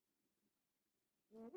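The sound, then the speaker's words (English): After a near-silent stretch with a faint low hum, a loud, brassy Viking horn (Gjallarhorn) blast bursts in abruptly at the very end, rich and droning, then cuts off. “Sound the Gjallarhorn. Please sound the horn.”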